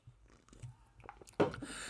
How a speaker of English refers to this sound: So, sorry, I'm drinking Fernet Branca.